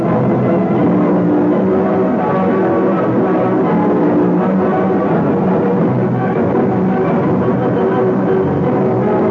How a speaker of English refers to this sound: of the following program has been inexplicably and very mysteriously replaced by a curious hum. We are sending it out to international experts and technicians to discover just who the hell is covering up here.